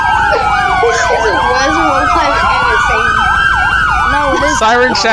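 Several police sirens wail at once, their rising and falling tones overlapping loudly and continuously, with a rapid yelp pattern near the end and low traffic rumble underneath.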